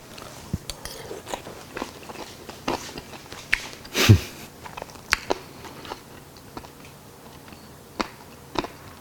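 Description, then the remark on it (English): Biting and chewing of a crunchy bacon sandwich, with sharp crisp crunches scattered through the chewing and one loud bite near the middle, no talking. “The crunch of the bacon.”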